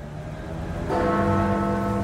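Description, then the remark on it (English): Big Ben, the clock bell of the Houses of Parliament by Parliament Square, strikes the hour once partway through, its loud, rich tone ringing on steadily over the lingering hum of an earlier stroke, with no voices. “Bleak explained, "People think the Big Ben is the name of the tower, but Big Ben is actually the name of the bell that strikes the hour."”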